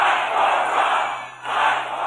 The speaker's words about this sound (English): more than 10,000 or so people, and it's so loud, when the president introduces Senators Perdue and Leffler, you can't even hear what the crowd is chanting. And I have to find out afterwards, they were chanting, fight for Trump, fight for Trump.